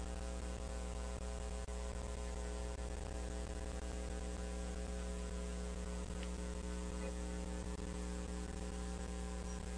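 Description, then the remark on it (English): A steady electrical buzz from a sound system whose speakers are being set up and tested drones without a break, a low mains hum with harmonics and faint static hiss, fairly quiet and constant throughout, with no voices. “We gotta get that buzz.”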